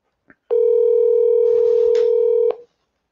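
A phone call being placed to a caller on a call-in show: a short click, then one loud, steady electronic telephone tone that holds for about two seconds and cuts off abruptly, with no talking.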